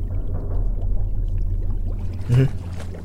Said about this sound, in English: It was bubbling beneath the water moments ago. The cave is perhaps just below 4 meters in length and a relatively fine circle. Our little bubbling sea hole is in the middle, a deep abyss of ugly fish and salty, chilled water.